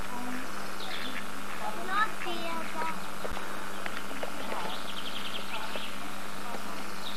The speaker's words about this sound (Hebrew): וכאן עוד ברווזים מגיעים. שייטת ברווזים.